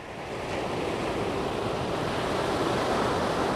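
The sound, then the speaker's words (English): Steady roar of ocean surf washing onto a beach where surfers are, a broad continuous rush that swells slightly and stays loud throughout, with some wind noise mixed in and no voices. “Activists with the Surfrider Foundation are down at the beach this day, quizzing surfers about why they're traipsing right past this morning's red paper signs that say, warning, ocean water may cause illness.”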